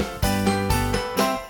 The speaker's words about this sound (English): How about all those bells? Bells? Okay, this one's lost her mind. I'm serious. Can't you hear them? They're ringing everywhere.